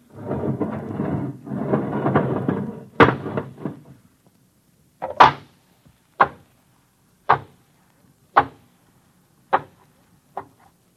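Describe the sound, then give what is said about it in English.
A bunker airlock's inner door opening: a loud, rushing roar of air lasting a few seconds, followed by six or seven sharp mechanical clanks spaced about a second apart, echoing. “All right, open the inner door.”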